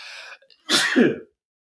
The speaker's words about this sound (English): And I'm sneezing.